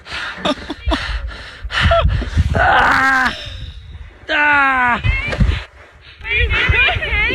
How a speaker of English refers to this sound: Oh, you hear the other kids? All right. They're yelling.